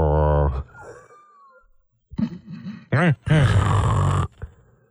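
A man loudly imitates an old man snoring, mocking baseball manager Tony La Russa sleeping in the dugout: a long throaty snore, a thin whistling exhale, then a few rough grunting snorts and a final drawn-out rasp.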